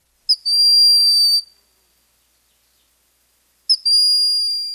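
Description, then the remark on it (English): A broad-winged hawk gives two high, thin whistled calls, each held steady for about a second with a brief sharp onset, separated by a long pause. The calls are clear, with no other sound. “If you can't make it to Hawk Mountain, check out the woods here in the summertime for this quiet and gentle hawk with the plaintive whistling call.”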